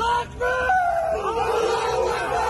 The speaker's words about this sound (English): Footage released by Chechen fighters helping Russia showed them raising a Soviet flag in the city and shouting in celebration.